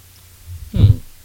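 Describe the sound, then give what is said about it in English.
Wet mouth sounds of someone swishing and chewing a sip of whiskey while tasting it, the Kentucky Chew, ending in a short low voiced hum, brief and fairly quiet. “I love how you're doing that. That's the Kentucky Chew.”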